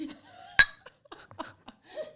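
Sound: glasses clinking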